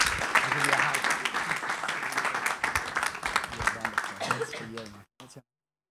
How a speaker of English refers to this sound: Let's give her a clap.